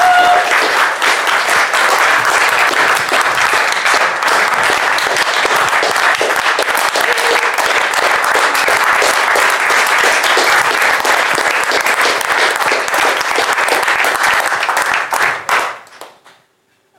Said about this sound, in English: What a nice bunch you are. That's honour. There you go. They've all stood and clapped you.